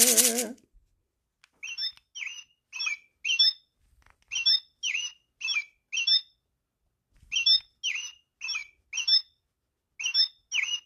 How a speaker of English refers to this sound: I hear a bird.